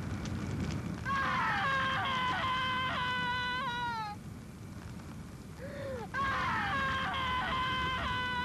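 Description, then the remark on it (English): A man lets out two long, anguished screams separated by a brief pause, loud over a steady crackling, rumbling background, as he falls to the ground after his car explodes. “His car explodes, and he just screams, falling to the ground.”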